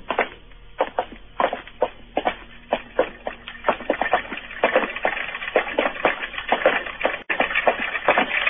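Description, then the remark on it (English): More than 100 clocks ticking at once in one room: a dense, uneven clatter of sharp clicks overlapping with no single steady beat, continuing throughout with no voices. “You mean the clocks, madam? There are more than 100 clocks in this room.”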